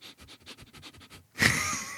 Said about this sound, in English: I know sometimes my breathing comes up on the podcast. I don't really know what to do. Hold on. Let me. I can still hear myself breathing.